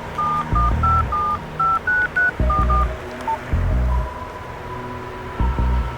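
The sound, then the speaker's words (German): A rapid series of short, clear mobile phone keypad beeps as someone dials a call, about a dozen tones in quick succession with brief pauses, followed by a low steady tone, without any talking. “Komm, gib dein Handy her, ich rufe ihn an.”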